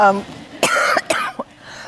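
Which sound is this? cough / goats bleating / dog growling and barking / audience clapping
cough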